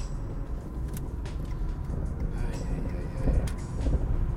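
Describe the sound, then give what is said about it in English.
A car driving on the road: a steady low rumble of engine and tire noise that holds at an even level throughout, swelling slightly near the end. “Well, at least I'm going the opposite direction from the rest of the traffic.”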